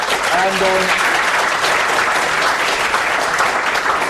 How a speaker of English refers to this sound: So I wonder if you could give a round of applause to our speakers.